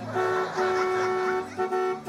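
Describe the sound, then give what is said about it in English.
A loud truck horn blares in one long sustained blast, then gives two quick shorter honks right after. Nobody speaks. “Well, that's where Crockett's Publishing comes in with their Haunted Truck Translation Dictionary.”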